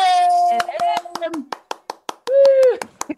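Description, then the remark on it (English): Steady, evenly spaced claps ring out, sounding like a small group clapping in rhythm, while a high voice cheers and whoops over them in two drawn-out bursts. “So is that the same applause you're used to when you're in Eurovision as well?”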